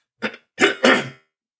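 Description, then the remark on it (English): A short burst of coughing and throat clearing: one brief hack followed by two heavier, rasping coughs in quick succession, then quiet. No one speaks. “Yeah, I didn't hit mute fast enough. It's really good cough to button, the cough button.”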